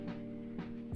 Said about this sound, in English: And with that fucking burp, we're done.